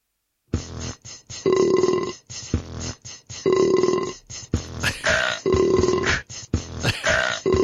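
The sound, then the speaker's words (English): A rapid series of loud burps played by a voice assistant skill, some short and some long and drawn out with a throaty, tonal quality, following one another with barely a pause and no talking. “Let's just keep going for now with the free burps.”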